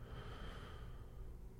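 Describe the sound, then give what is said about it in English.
A slow, steady, deep inhale drawn in through the nose and into the belly, a soft continuous airy rush lasting a second or two, fairly quiet with no talking. “Breathing deep in through the nose.”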